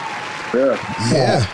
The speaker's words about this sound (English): So let's give him a round of applause for that.